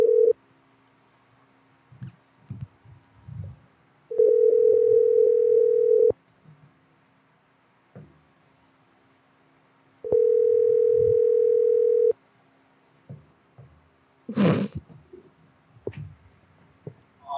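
A telephone ringback tone: two steady, mid-pitched buzzing rings, each about two seconds long, separated by a few seconds of quiet with faint rustling, followed by a sharp click-like burst.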